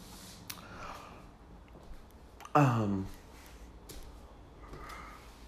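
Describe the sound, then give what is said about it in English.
A single loud cough bursts out about halfway through, short and harsh, against quiet background noise with no one talking. “would not be an episode without me coughing at you.”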